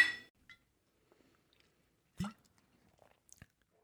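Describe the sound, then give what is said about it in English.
Beer glasses holding Ballast Point Bonito clink together in a toast with a short bright ring, followed by a few sparse, quiet knocks and handling sounds. No one speaks. “Well, I don't think we can go to such deep theology without a beer in our hands. So cheers.”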